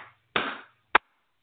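Two sharp hand claps on their own, done as a clapping clearing in an energy practice, the first with a brief ringing tail, the second a short, crisp smack about half a second later.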